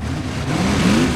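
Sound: monster truck engine revving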